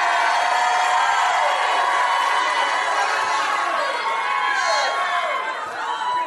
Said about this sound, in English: Somebody start shouting. You're going to another level.